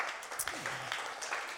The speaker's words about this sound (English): Round of applause